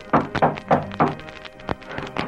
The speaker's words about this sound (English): Following the Lone Ranger's instructions, Bill Andrews took the buckboard by the shortest route to Steve Logan's ranch. Dismounting quickly, he rapped on the door and...